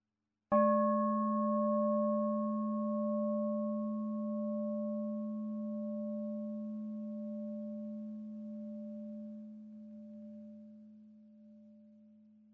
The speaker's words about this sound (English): Please being aware of the sound of the bell from its beginning to its end.